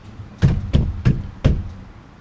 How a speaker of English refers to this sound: Stomp.